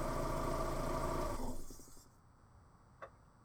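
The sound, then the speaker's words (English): A car engine rumbles loudly and steadily as it pulls into a driveway, then winds down and cuts off, leaving near silence broken by one short knock. “Then the car drove up into the driveway.”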